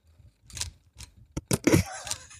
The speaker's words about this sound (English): Listen to that. That's a camera. Yeah. Same shutter on the Fuji.